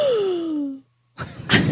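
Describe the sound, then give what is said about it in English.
A single voice mimics the shocked gasps of townspeople: a drawn-out, falling vocal gasp, a brief pause, then a quick burst of sharp, breathy intakes of air, fairly loud. “That was the gasps of the people in the town.”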